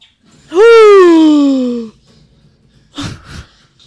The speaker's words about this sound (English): Your biggest gasp was here.